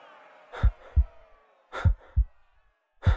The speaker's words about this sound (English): My heart was beating so loud, I'm sure everyone must have heard.